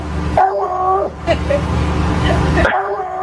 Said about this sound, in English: This is a woman who taught her dog how to say hello. Listen up.